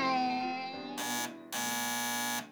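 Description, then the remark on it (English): A harsh, raspy electric door buzzer sounds twice, a short burst and then a longer one just under a second, following a fading humming tone. No voices. “Was that a buzz?”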